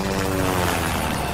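A helicopter's steady, throbbing rotor drone with a low engine hum holds at a fairly loud, even level for about a second and a half, with no voices.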